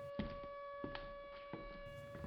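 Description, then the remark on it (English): A steady, droning siren wail holds one pitch throughout, fairly faint, with a few soft thumps and clatters breaking in over it. “Why is the siren going off?”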